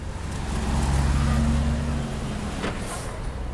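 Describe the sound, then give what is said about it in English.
Idling bus and traffic engines rumble low and steady, with a brief hiss of air brakes and faint background bustle of the main bus station in Ulaanbaatar, the capital of Mongolia, on a day that is starting to get hot. “The main bus station in Ulaanbaatar, the capital of Mongolia, is starting to get hot.”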